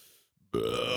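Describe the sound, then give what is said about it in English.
A loud burp erupts halfway through after a moment of near silence, a low, rumbling, sustained belch that carries on to the end with no talking. “I got a burp.”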